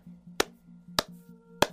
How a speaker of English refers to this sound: from one fellow's smart mouth to another, golf clap.